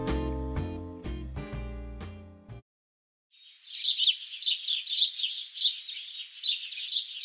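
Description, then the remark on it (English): A few sustained musical chords ring out and stop, then after a short pause birds chirp steadily in spring, a lively stream of high, repeated tweets that carries on to the end. “Don't you just love the birds chirping?”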